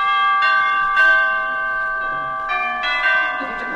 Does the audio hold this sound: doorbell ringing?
yes